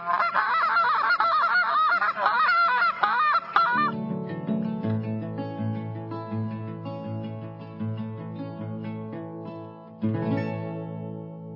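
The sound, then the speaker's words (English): A rapid, loud series of goose honks blown on a waterfowl call by a champion waterfowl caller for about four seconds, then giving way to steady, sustained instrumental music with a low droning bass. “Hi, I'm champion waterfowl caller”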